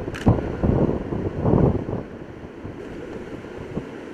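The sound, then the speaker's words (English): A sudden gust of wind on a beach, picking up 5 to 10 miles an hour all at once, buffets loudly in low, rumbling bursts for a couple of seconds, then eases into a steadier windy roar with surf in the background as waves build. No one speaks. “Notice the wind just picked up 5 to 10 miles an hour just all of a sudden, and the waves are already showing that.”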